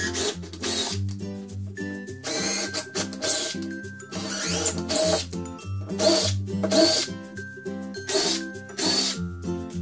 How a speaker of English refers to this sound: This installer has over 10 years of experience in finished carpentry, so the drill is basically an extension of his hand.